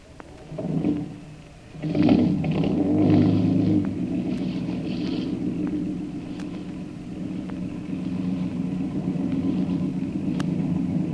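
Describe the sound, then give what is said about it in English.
A motorboat engine, on a boat just lowered away from a ship, coughs and sputters in a couple of short bursts, then catches and settles into a steady, low, throbbing rumble that runs on without a break. “Are the falls clear? Aye, aye, sir. Start your motor”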